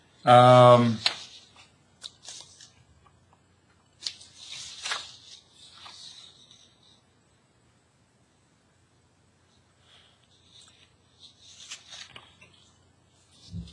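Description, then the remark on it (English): Soft, crisp paper rustling comes in several scattered bursts with quiet pauses between them, after a brief vocal sound at the very start. “And just so the listeners are wondering why they ain't paper in the back, one of the things we do is we try to do pre-interviews so that the interview, at least we go and get as much detail.”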